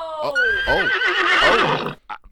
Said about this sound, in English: I believe there's been a development in the Matilda the Horse case. That horse just sneezed on the escalator.